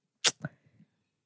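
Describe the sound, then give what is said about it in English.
A single sharp, explosive cough bursts out loudly, followed by a shorter, throatier second hack and a faint rasping breath that trails off into silence. “Since we're all coughing, I'm gonna kill myself.”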